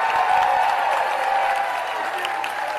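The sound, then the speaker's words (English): A large crowd at the CPAC conference applauds steadily, a dense wash of clapping with a few scattered cheers mixed in, holding loud and even throughout before easing slightly near the end. “And she got some cheers from the CPAC crowd.”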